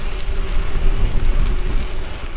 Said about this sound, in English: Hey, man, thank you so much for letting me ride with you this morning through the wind and the rain. It's going to be raining all afternoon, I think.